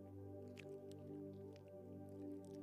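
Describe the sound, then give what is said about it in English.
A few soft crinkly peeling and squishing sounds of a small plastic communion cup being opened, over a steady low musical drone. “And open up that little cup.”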